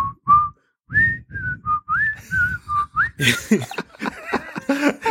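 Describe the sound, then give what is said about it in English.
A person whistles a short, bouncy sequence of clear tones, imitating the whistle that enemies make in a video game, then breaks into chuckling laughter. “I'm trying to think of a more stupid whistle I could do.”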